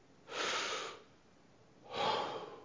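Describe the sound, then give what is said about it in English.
A deliberate deep inhale, airy, followed after a short pause by a second long breath of similar strength. No talking, just the two breathy rushes. “Forgiveness is like breathing.”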